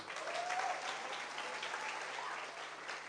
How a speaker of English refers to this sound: Take care of your pastor. Oh, you can clap again.